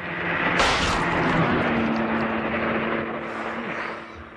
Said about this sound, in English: Who was in that car? Who fired the shot?